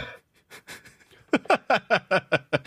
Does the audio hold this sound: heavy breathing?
yes